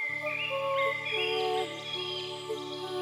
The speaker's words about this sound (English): Repurposing the air into bliss through the song of birds.